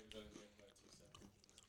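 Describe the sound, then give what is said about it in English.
Quiet crunching as lightly salted ridge-cut potato crisps are chewed, with several crisp bites spread unevenly across the moment and a soft voice murmuring underneath. “You can hear we that did crunch.”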